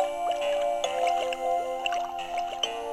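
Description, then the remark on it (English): Watery bubbling and gurgling from a seahorse baby toy, mixed into slow lullabies and meant to sound like sinking deeper into the ocean, with small rising blips popping over a steady hum, like air escaping underwater. It stays moderately loud and continuous, with no voices. “And those melodies, you know, were played in kind of a dreamy, slow way and mixed with some bubbles and gurgling and it was meant to sound like it was, you know, you were sort of sinking deeper into the ocean.”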